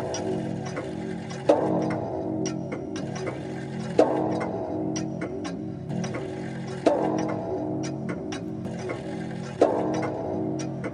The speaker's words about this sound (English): And anon, there strikes the ebony clock which stands in the Hall of the Velvet. And then, for a moment, all is still and all is silent, save the voice of the clock.